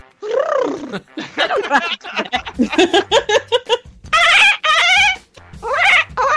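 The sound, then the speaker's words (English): A loud burst of chicken clucking and squawking plays as a phone ringtone, a rapid series of harsh, rising calls with a low hum beneath, filling the whole stretch without talk. “New ringtone.”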